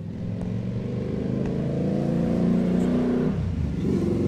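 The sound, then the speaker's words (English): A car drives past outside, its engine humming steadily with a low, throaty drone, then its pitch shifts as the vehicle rolls by. The sound stays loud and continuous, with no voices. “Maybe he's just driving around. For the sake of driving around in circles?”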